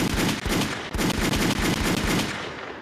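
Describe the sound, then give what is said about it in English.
Loud gunshot sound effects fire in rapid, overlapping bursts like a machine gun, continuing for about three seconds with no one talking, then tapering slightly at the end. “Listen, gunshots in the chat, please.”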